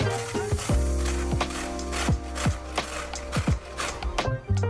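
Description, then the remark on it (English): Rhythmic scraping strokes of beets being shredded on a grater by a gloved cook, steady, over soft background music, with no talking. “My meat is boiling, and meanwhile, we're gonna shred some beets, and it will be a messy process, that's why I put some gloves on.”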